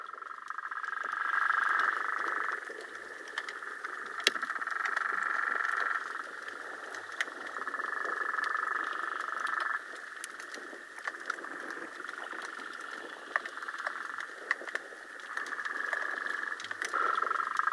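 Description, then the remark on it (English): Harbor porpoise sounds captured by a hydrophone lowered into the water from a fishing pier, the porpoises probably at least 30 yards from it: a steady, buzzy, croak-like drone that swells and fades in long stretches, with scattered sharp clicks and a soft hiss throughout. “We were able to quickly put that hydrophone in the water, and this is what we heard.”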